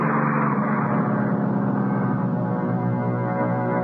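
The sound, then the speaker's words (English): A No. 107 bus pulls away from a covered bus stop beside a phone booth under clouding skies, its heavy diesel engine droning loud in a steady, rumbling hum with no voices over it. “When it pulled away, I was all alone at the bus stop.”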